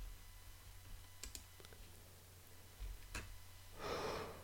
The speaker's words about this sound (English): Sorry about that yawn. I've got coffee right here. Let's get a sip. I think that's a sign that I need a good sip right now.